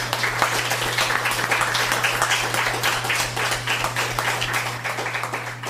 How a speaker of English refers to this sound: We've heard some wonderful readings here tonight. Let's give yourselves and everybody else an applause.